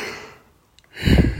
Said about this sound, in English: Sorry, big yawn.